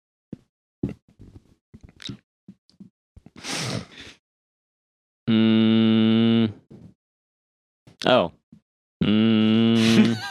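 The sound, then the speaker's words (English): Two loud, steady game show buzzer blasts, each lasting over a second, used as players' buzzers in a guess-the-movie tagline game, follow scattered clicks, taps and a sharp breathy gasp, with brief vocal sounds in between. “what is your buzzer?”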